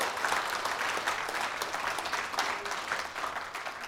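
A church crowd claps steadily in a sustained round of applause for Carson as the new youth director, dense and fairly loud, with crisp overlapping hand claps filling the whole stretch without any talking.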